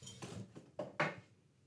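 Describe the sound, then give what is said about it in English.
Glassware is shuffled out of the way across a table in a short burst of clinks and knocks, roughly five hard contacts with the last two loudest, then quiet. No one speaks. “Sorry, I'm just shuffling this out of the way.”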